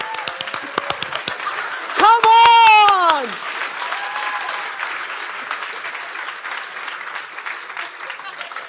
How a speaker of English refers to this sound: I'm clapping in church. It's okay.